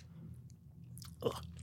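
Someone bites into and chews a peanut butter filling: a few soft, moist mouth sounds, then a sharper crunchy burst near the end, over a low steady hum with no talking.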